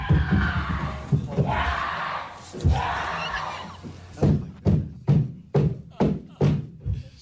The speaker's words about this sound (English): What is that banging noise? She was stomping her foot on the floor in joy and passion.